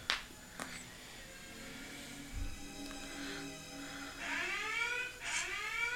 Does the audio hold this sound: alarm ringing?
yes